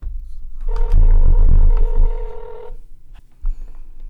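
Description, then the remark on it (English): A phone call to a friend rings out with one steady electronic ringback tone lasting about two seconds, fairly loud and clear, then fading into near silence with a faint click afterward. “Let's go ahead and get her on the phone now.”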